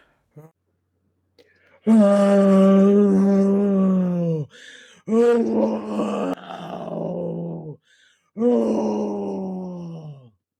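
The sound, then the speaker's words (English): A voice imitates a deep, rumbling growl in three long, drawn-out bursts separated by short pauses. Each is loud, with a groaning quality that sinks lower as it fades. “Suddenly they heard a growl.”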